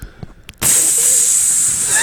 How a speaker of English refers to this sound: We can get a sizzle noise after a hot take and just press that.